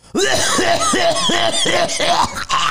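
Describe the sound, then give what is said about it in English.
A man gives a rapid string of about six harsh, throaty coughs, loud, in a steady rhythm of quick bursts with no talking in between. “It was a typical … really, cough.”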